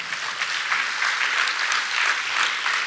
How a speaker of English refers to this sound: don't you dare clapping for me. Clap for the Holy Spirit, go ahead.